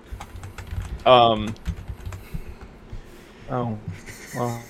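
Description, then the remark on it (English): Rapid clicking of keys on a computer keyboard in irregular bursts as someone types in a name, interrupted a few times by brief voiced vocal sounds from a person. “Well, I just got a spoiler typing in her name.”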